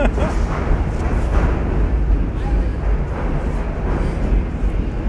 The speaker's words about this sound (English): What I thought was, there are some trains again. Wow. These trains are loud.